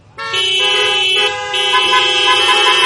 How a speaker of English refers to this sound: Honk your horns.